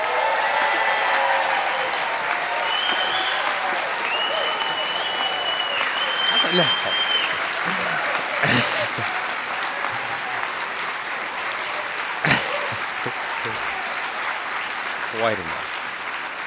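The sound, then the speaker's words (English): A large crowd claps and cheers for Mr. Daniel Silva in sustained, dense applause for the whole stretch, with occasional whoops and shouts rising above the steady roar. “If you could summon all of the passion and energy that you have when you're sitting there way past your bedtime reading a Gabriel Allon novel, and give a big, warm round of applause for Mr.”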